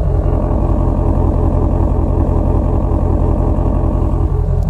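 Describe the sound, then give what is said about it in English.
The 5.2-liter flat-plane-crank, 526-horsepower V8 of a 2020 Ford Mustang Shelby GT350 Heritage Edition burbles steadily at idle, a loud, rumbling low throb with a rhythmic pulsing texture and no talking. “I absolutely, absolutely love that sound. Just listen to it burble.”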